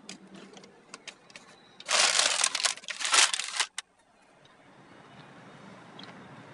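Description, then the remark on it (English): Crunchy snack chewing, a loud burst of crackly crinkling and munching lasting about two seconds, preceded by faint clicks and followed by soft, steady hiss. No one speaks. “Oh my God, I'm just chewing on my podcast episode.”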